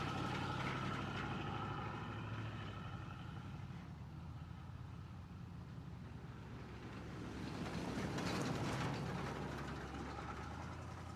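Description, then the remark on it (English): The engine of an Impala car idles steadily, a continuous low rumble with a faint mechanical hum. It swells a little louder toward the end, and no one speaks. “Driver picks the music, shotgun shuts his cake hole, and the ones in the back enjoy the ride, idling in the Impala.”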